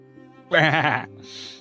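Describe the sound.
A person imitates a goat with one short, loud, quavering bleat, lasting about half a second over a low steady hum, followed by a faint hiss.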